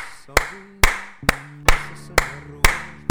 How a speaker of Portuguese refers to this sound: Bater palmas para o Carlos Coutinho Vilhena e fazê-lo uma bénia